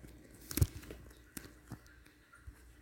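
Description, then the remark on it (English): Several soft footsteps of a person wearing a raincoat walking to a bus stop at around 11 p.m., unevenly spaced, with one louder scuffing thump near the start and quieter taps after it over a low background hiss. No one speaks. “keep listening if you want to hear the sound of me walking to the bus stop the other day at around 11 p.m. wearing a raincoat.”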